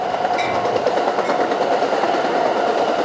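A train rolls past on tracks along the top of a coastal bluff, a steady, loud rumble and rushing hiss of rail cars with faint rhythmic clatter that holds level for the full few seconds, with no one speaking.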